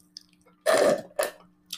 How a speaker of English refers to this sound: And, oh my gosh, yeah, sorry guys. Sipping on the smoothie, it's really good.